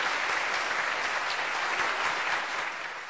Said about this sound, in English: A round of applause all around.